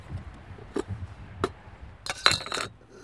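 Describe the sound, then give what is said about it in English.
Light metallic clinks of a titanium camping kettle and cups: two sharp taps, then a quick cluster of bright, ringing knocks with a thin high tone, over faint background rustle. “It's a little titanium kettle and cups.”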